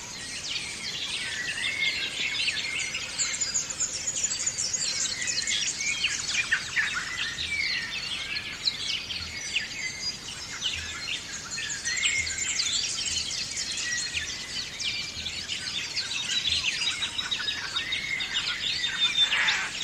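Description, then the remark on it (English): A dense dawn chorus of many wild birds at dawn in the Grampians nature preserve, west of Melbourne, Australia, chirps and sings continuously, overlapping calls filling the air with steady, bright twittering throughout. “It's dawn, and we're surrounded by many animals, including kangaroos. Here's a dawn chorus of mostly birds.”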